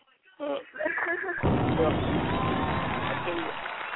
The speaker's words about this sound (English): I forgot I'm supposed to be clapping and carrying on. Hold on. Let me get the clap. Let me get the clap.